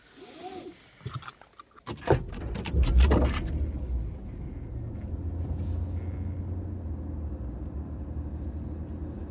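A few clicks and a car door thumping shut, then a car engine starts and settles into a steady low rumble that continues to the end.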